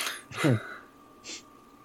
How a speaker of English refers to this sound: So as the episode ends, Scuttle continues to sneeze uncontrollably.